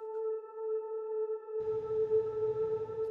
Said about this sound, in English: Let's listen to the first pad here, which, you know, this looks extremely simple. Sine waves, a little bit of attack and release.